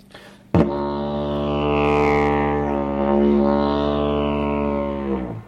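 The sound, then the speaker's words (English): A didgeridoo, an Australian Aboriginal instrument, plays one steady, buzzing drone for about five seconds, its tone swirling and shifting to imitate a swarm of insects. It is fairly loud, with no talking. “And all kinds of swarms of insects.”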